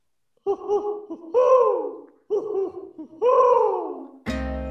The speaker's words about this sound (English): Watch out. Here comes that pesky owl.